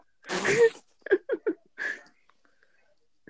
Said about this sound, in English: Bless you.